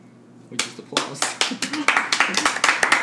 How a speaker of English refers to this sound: Clap, clap, clap, clap, clap. Woo! Yeah. Insert applause here.